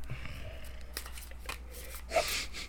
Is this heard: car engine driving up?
no